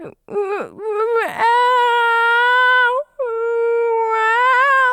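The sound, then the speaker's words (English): A person imitates the sad little meow of Eric, a 19-year-old cat: a few short wavering cries, then two long, drawn-out whining meows with a slightly quavering pitch, loud and alone without other talk. “Gosh, he used to do that sad little meow. You know, the one that sounds like...”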